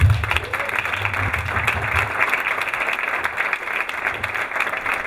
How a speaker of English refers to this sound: Big round of applause, because no, not a professional